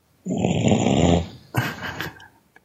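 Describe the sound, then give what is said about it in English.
A person fakes a loud, rasping snore, snoring as if in the middle of a sentence like Andy Kindler would do: a long, rough, rattling inhale followed by a shorter gravelly exhale, with no talking. “Just start snoring in the middle of a sentence.”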